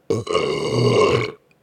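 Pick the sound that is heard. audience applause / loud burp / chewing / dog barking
loud burp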